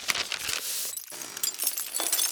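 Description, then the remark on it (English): Window glass shatters loudly as someone crashes through it, a bright crashing burst followed by a scatter of tinkling shards continuing for a couple of seconds, with no voices. “The minute the glass shattered, I leaped to my feet and started to rush after Willie”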